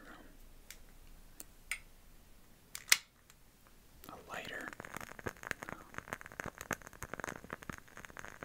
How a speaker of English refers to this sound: Sounds like fire crackling. Yeah, it is. In the candle. Is it a lighter? Oh, it's a the candle lit. Yep. Really? And I lit it already. Yeah. That's crazy. Do you hear it? Yeah. That's really cool. It's a crackling one.